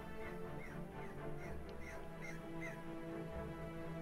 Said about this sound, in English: Yes. Yeah, I heard a sound. There's probably crows outside my window. Dude, we have a giant murder that hangs out along the creek.